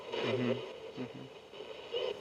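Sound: radio static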